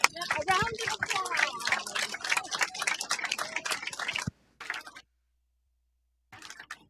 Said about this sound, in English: So we don't give him applause very often. Let's give him a standing ovation. Let's stand up and just thank God for his gifts.